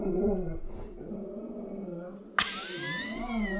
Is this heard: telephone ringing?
no